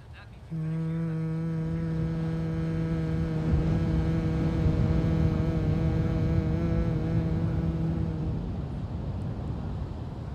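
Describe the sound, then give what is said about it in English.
A person at the beach hums one long, steady low note from the chest for about eight seconds, resonant, over the constant rushing noise of the ocean that continues after the hum stops. “I'd like to invite you to make a humming sound starting in your chest and allowing it to vibrate through your body.”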